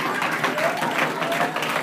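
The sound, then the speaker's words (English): An audience at California State University, Dominguez Hills breaks into steady applause, many hands clapping in a dense, continuous patter that holds at an even, fairly loud level throughout, with faint murmurs of voices mixed in. “and let's have a round of applause for everybody here at California State University, Dominguez Hills.”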